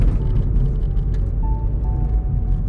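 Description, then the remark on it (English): A steady, low rumble of a car's interior while driving, with constant engine and road noise filling the background and no one speaking. “I am grateful to have this car that functions and that is paid off.”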